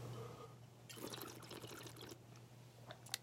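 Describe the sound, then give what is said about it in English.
Bubbling water gurgles in a single burst lasting about a second, made to imitate a bong hit, then tapers into a few faint drips and splashes over a steady low hum. No one speaks. “whenever I do this, I'm making fun of smoking bong water. I'm not actually smoking a bong.”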